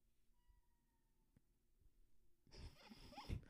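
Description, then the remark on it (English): A cat wanting to be let out meows near the end over a sudden burst of loud scratching and rustling, following a few seconds of faint, near-quiet background. No one speaks. “I think the cat wants to get out.”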